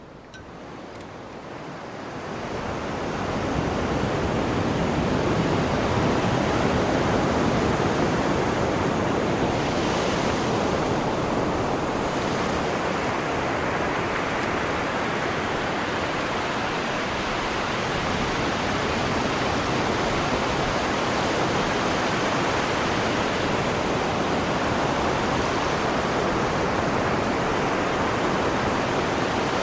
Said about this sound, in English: We're going to take a quick break here, listening to some ocean.